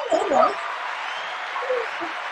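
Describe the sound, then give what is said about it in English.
Steady audience applause, a dense wash of clapping that fills the whole clip at a moderate level, with a brief vocal whoop near the start and faint voices underneath. “You have to have a round of applause.”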